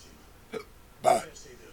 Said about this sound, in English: The hiccups? No, some belching.